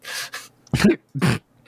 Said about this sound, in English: cough.